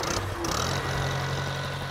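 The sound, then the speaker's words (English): The engine of a white 1950 Farmall Cub demonstrator tractor idles steadily in North Carolina, its low, even rumble continuing for the whole moment, with no voices over it. “This week, we're off to North Carolina to check out a white Farmall Cub demonstrator.”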